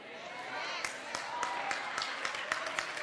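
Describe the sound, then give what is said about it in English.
An audience applauds in a steady, dense patter lasting about three seconds, with a few sharper individual claps standing out now and then over a soft crowd murmur. “I see some of y'all can't even clap because you can't even see it.”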